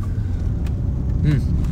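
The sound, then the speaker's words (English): Steady low rumble of road traffic with cars going by, a continuous engine drone with a brief muffled voice-like sound partway through. “On some traffic commentary, there is a lot of construction going on here, and I do not know why.”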